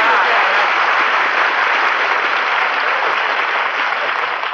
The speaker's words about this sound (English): I appreciate that, folks. You know, applause is food for an actor, so thanks for the lunch.